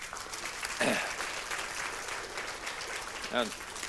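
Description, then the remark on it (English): An audience applauds with steady, dense clapping from many hands for several seconds, while a couple of brief voices call out above the clapping. “But let's give her some applause.”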